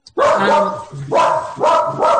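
A dog barks loudly, three or four harsh, strained barks in quick succession with brief pauses between them.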